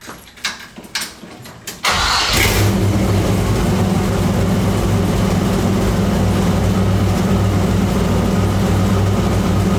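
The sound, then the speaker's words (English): An engine cranks and catches with a sharp throttle blip, then settles into a steady, loud, low-pitched idle with a rough, pulsing rumble that holds to the end. “All right, I think the tap of the throttle where it settles and idle should tell you a lot right there.”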